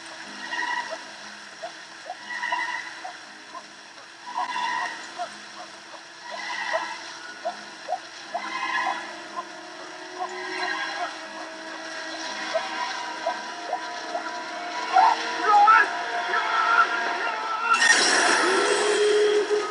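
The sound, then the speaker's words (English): An eerie, echoing monster sound effect from a TV show, heard as the screen goes dark before a commercial break: a series of reverberant, whinny-like cries repeating in a steady rhythm, building toward a loud, harsh, hissing burst at the end. No one speaks. “Now there, the screen goes dark and it's just this echo. The monster is back.”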